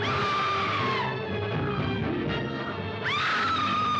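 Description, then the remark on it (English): Actress Fay Wray, playing Anne Darrow in the film King Kong, screams in two long, shrill bursts separated by a short gap, the second rising sharply at its start, over a steady hiss and rumble like an old soundtrack. “I call her the screaming woman, because that's all she does is scream and like writhe around and scream.”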